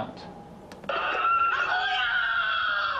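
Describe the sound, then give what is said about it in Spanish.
A child screams in distress, crying out for his brother, in a video from the Syrian uprising; a high, strained cry that bursts in after a moment of quiet background noise and holds loud and unbroken to the end. “Un niño grita, mi hermano, mi hermano.”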